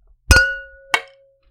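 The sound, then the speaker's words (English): Two bright clinks of glasses with ice, one drink with a wedge of lemon, in a toast, the first ringing out with a sustained glassy tone, the second shorter and fading quickly into silence. No talking. “No, just a wedge of lemon in mine, and so you'll hear ice tinkling, clinkling.”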